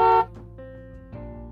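A cruise liner carrying thousands of people honks its horn at an old man in a small fishing boat: a loud, brassy blast that cuts off quickly, then lower droning horn tones linger and swell slightly again, with no one speaking.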